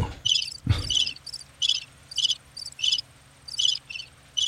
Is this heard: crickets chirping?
yes